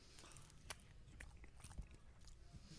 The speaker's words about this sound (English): Don't record the chewing noise. Oh no, that's all staying in there.